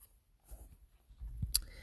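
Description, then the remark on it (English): Quiet paper rustling as pages of a rhyming coloring book are turned, with a soft shuffle early on and a sharper flick of a page near the end, with no talking. “So you're going to hear pages turning, but that's okay.”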